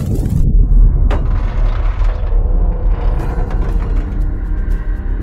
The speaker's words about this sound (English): And now, 200,000 miles from Earth, the cracked and flaked Teflon insulation fails, and the wires spark. A violent fire erupts, and the pressure in oxygen tank 2 rises rapidly, and the tank explodes.